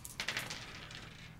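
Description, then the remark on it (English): Dice rolled to determine aftermaths clatter across a hard tabletop in a quick burst of sharp clicks that tumble and settle into a faint rattle, moderately loud, with no voices. “So, you roll in the dice in front of you, and we determine our little aftermaths.”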